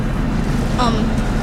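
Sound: boat engine running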